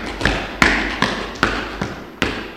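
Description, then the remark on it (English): A crowd stomps their feet in a steady rhythm, about six heavy, booming thuds spaced evenly a little under half a second apart, each with a brief rumbling tail, and no talking. “Give me a stomp if you think that sounds amazing.”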